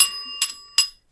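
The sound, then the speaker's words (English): A small bell rings several times in quick succession, each bright metallic strike leaving a sustained ringing tone that fades before the next, with a final strike cut short at the end. “Oh, wow, it's just straight for the bell.”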